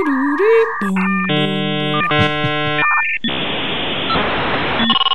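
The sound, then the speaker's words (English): A dial-up modem handshake plays loudly on its own: warbling tones and beeps, then stacked buzzing chords, giving way to a harsh burst of hissing static. “And we're going to take the dial-up sound from the internet.”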